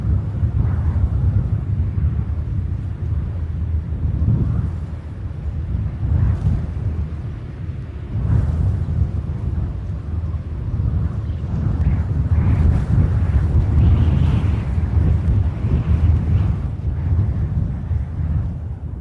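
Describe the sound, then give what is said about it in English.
During a church sermon, a voice imitates the strong, violent wind of the Bible story, blowing a loud, steady rushing roar that swells and eases slightly in waves for nearly twenty seconds, with no talking over it. “That was about the best wind I could get.”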